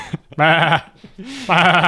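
Two loud, wavering sheep bleats, each about half a second long with a quavering tremble, separated by a brief pause with a short lower grunt between them.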